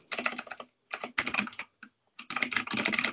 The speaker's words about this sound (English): Wow, that's some typing. I love me my mechanical keyboard. No one can accuse you of not working when you've got that going on.